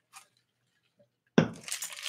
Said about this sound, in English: Hold on. Let me take a drink here.